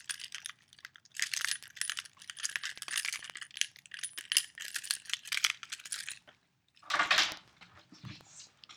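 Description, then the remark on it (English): Jangling of car keys, shaken as a Foley sound effect in a steady metallic rattle for about six seconds, then a short pause and one more brief jingle that fades out. “Car keys.”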